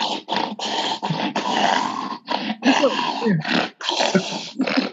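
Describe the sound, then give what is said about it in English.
A sleeping bulldog with a deviated septum breathes and snores, loud raspy snorts and wheezy breaths repeating in a quick, steady rhythm with only brief pauses between them. “No, that would be my dog breathing in the background. He's asleep.”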